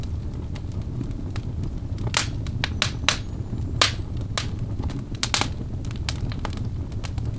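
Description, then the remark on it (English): A large birch wood fire in a fireplace crackles steadily, with sharp irregular pops and snaps scattered over a low, continuous roar of flames, moderately quiet. “Also, I think the crackles are just enough if you play them pretty low.”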